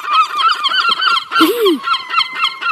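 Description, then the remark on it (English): A dense flock of seagulls being fed biscuits squawks, harsh overlapping calls piling on top of each other in a continuous noisy clamor with no voices. “Whereas seagulls.”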